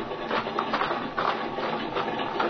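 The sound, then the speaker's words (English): A small airplane engine idles in a field with a steady, rough mechanical drone and faint rhythmic pulsing, holding an even loudness throughout with no voices. “Well, here's the good old ship, Speed. Now, look, she's still idling.”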